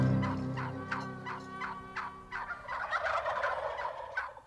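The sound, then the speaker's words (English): A North American wild turkey gobbles in a rapid, rattling burst of repeated throaty pulses, followed by a busier, overlapping stretch of gobbling that stays loud and harsh to the end. “All are welcome at this roundtable conversation about one of the wariest creatures in the woods. That's the North American wild turkey.”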